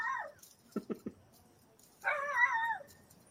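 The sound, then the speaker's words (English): A dog two houses down lets out a short whine, then three quick yips, followed by a longer, wavering whimper. All of it is faint and plaintive, with no talking. “I have a dog two houses down from me that's in trouble.”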